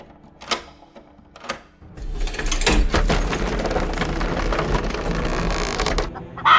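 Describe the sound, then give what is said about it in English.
A door being unlocked: two sharp metallic clicks, then several seconds of steady grinding, rattling mechanism noise with a thin high whine, ending in a final clunk. “Let me unlock the door and we can discuss business over a meal.”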